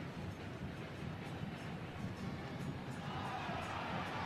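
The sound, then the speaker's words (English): A large stadium crowd at a soccer match between RSL and Orlando City booing after a player is knocked down with no whistle, in a sustained, steady roar, loud and continuous across the whole stretch with no clear pauses or distinct individual voices. “Savarino gets dumped. Savarino, the crowd booing.”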